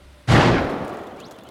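single gunshot

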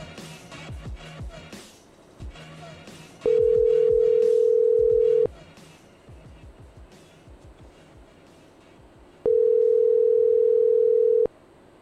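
phone call ringing

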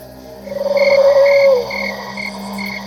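frogs croaking at night

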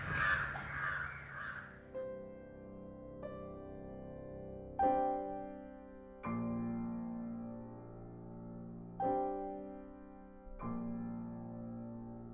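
crow cawing

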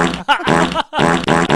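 fart sound effect

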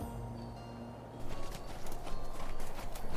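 horse hooves trotting

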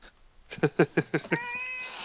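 cat meowing

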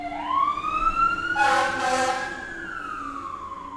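fire truck siren passing

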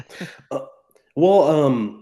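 cough

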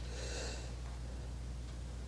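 yawn

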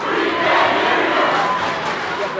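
basketball crowd cheering

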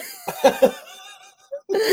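repeated coughing

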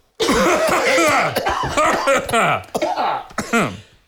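cough

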